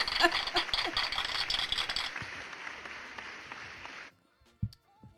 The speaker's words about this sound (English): Give me a round of applause for Reserve, who was killing in the pandemic.